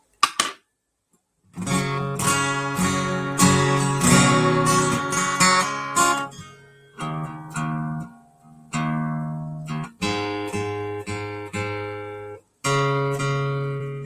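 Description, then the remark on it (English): A guitar is tuned, with strummed chords and single plucked notes ringing out and decaying, separated by short pauses as the pitch is adjusted. No one speaks. “I got to tune it real quick. It was the guitar was outside.”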